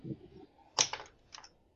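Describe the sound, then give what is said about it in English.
A few quick keystrokes on a computer keyboard, sharp plastic clicks in a short irregular burst followed by a couple more taps, fairly quiet, with no one speaking. “Just find it by typing Mary Jane Watson, Red Sonja.”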